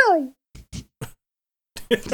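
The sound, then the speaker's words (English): A voice makes a quick descending 'pew'-like whine, imitating a ricochet or laser shot, followed by a few short bursts of talking. “You do a ricochet noise.”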